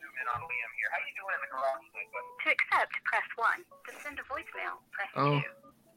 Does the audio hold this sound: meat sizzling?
no